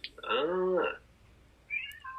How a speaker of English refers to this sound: We got a guest star here. Guest. We have a black cat joining the podcast. I don't think he's going to say much. He might meow,